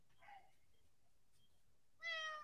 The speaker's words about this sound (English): Sorry, bro. He's like not gonna stop meowing.